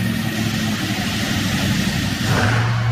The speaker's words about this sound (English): We're live on Facebook right now as we're starting up the trucks.